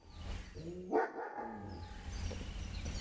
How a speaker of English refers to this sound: My dog Candy also wants to give a few inputs in the podcast.